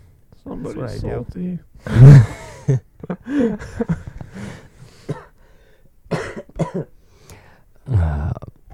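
A person coughs several times, with a loud, harsh burst early on and more scattered coughs and throat sounds following, mixed with brief vocal noises.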